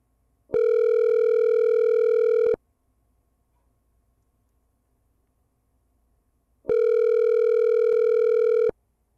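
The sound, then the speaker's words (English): A loud, steady telephone tone during an outgoing call to a random phone number sounds twice, each about two seconds long, separated by several seconds of silence, with no voices; the call then fails. “Now, this is a random number that happens to have a good area code that is actually a phone number.”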